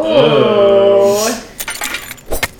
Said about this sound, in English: I have an idea. So I'm gonna take my maul and I'm gonna start smashing this corpse to get some blood on it. That way I can be like, took care of it, show my bloody weapon.